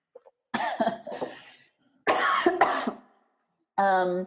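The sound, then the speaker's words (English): Harsh coughing comes in two rough bursts, each with a few rapid hacks, followed by a short voiced sound at the end. “Sorry, I'm about to cough.”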